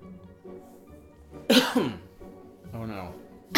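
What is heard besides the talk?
coughing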